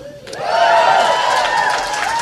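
a few people applauding

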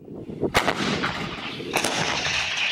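artillery fire

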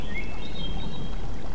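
river water flowing

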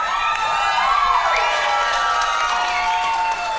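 audience cheering

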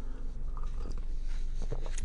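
sipping tea

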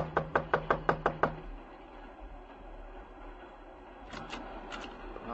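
knocking on a door

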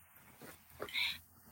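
coughing

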